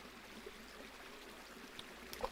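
Steady, quiet babble of running water, with a couple of brief plopping knocks near the end, like small stones dropping in. No one speaks.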